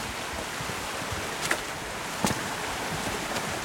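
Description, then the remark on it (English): A small, unnamed stream beside a public footpath gurgles and rushes steadily, a continuous watery wash with no pauses, broken only by a couple of brief knocks partway through. “You can really hear the stream beside me.”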